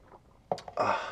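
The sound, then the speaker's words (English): A sip of water: a few quick wet clicks from the lips, then a longer airy slurp as the drink is drawn in, with no talking. “Take a sip of water from my dry throat.”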